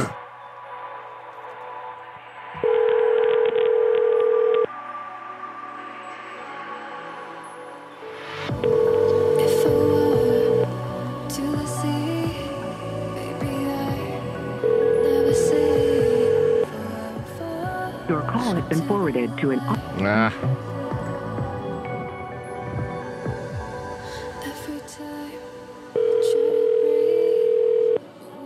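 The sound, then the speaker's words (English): A phone call to a customer about getting internet service rings out unanswered, its steady ringback tone sounding four times at long, even intervals over a busy, murmuring background with faint indistinct voices, before being forwarded to an automatic voice. “How's this prick ever gonna get internet if he doesn't answer the fucking phone about it?”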